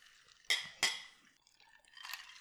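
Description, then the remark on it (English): Glasses of Irish cream mixed with hazelnut liqueur on the rocks clink together twice in quick succession in a toast, bright, their ringing tones fading, followed by softer faint clatter and rustling. “And then we're doing kind of a sipping on the rocks version with just equal parts of both. So cheers, guys. Cheers.”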